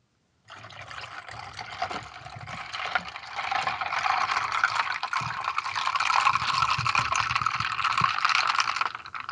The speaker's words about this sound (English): Poured over ice. Sounds like a heart attack waiting to happen.